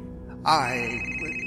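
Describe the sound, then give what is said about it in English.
A cell phone suddenly starts ringing on a film set, a bright, steady electronic ringtone that cuts in sharply and holds fairly loud, with a faint murmur of background noise underneath. “There are no bloody cell phones on my set.”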